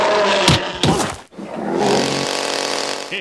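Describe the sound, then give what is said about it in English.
In a cartoon, a chainsaw wielded by a grizzly bear, Smokey the Bear as Choppy the Lumberjack, roars loudly, revving up twice in quick bursts, cutting out briefly, then settling into a steady, buzzing engine drone. There is no talking. “A grizzly bear with a chainsaw.”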